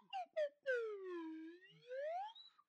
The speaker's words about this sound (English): Okay, so I was playing around with this fucking slide whistle, and then I have this like slide whistle.